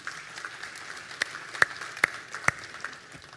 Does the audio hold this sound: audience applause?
yes